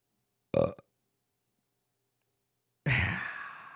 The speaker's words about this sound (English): Just had to sneak that final burp in there.